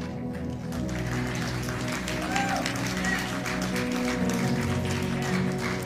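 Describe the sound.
A soft, polite golf clap from a church audience applauding their pastors, light scattered hand claps pattering steadily for several seconds over a low sustained hum and faint murmuring voices.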